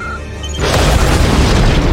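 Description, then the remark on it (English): After a brief quiet lead-in, many bombs detonate at a stronghold: a massive explosive blast erupts into a sustained, rumbling roar of detonations, loud, with heavy low-end booming continuing to the end. “Okay, so it's at that point that all the bombs detonate, and there's just tons of explosions going off on this Pike stronghold.”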